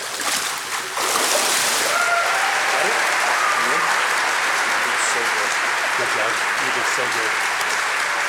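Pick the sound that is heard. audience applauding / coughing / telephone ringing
audience applauding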